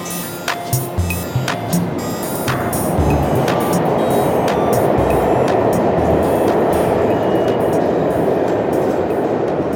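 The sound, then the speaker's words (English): A New York City subway train rumbles along loudly and steadily, with sharp rattling clacks early on before the roar swells into a constant, grinding rush of wheels on track. “Galen Smith lives in Brooklyn and works in Manhattan, and so he spends a lot of his time riding the subway and waiting for the subway.”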